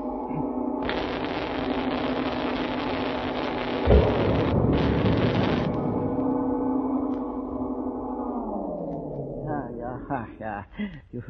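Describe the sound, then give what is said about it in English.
Harsh electrical sparking crackles over a steady low hum as a switch is thrown on a cathode tube device, broken by a single sharp firecracker-like bang. The hum then winds down in pitch as a voice begins. “You throw a switch, a lot of sparks fly, a bang like a firecracker.”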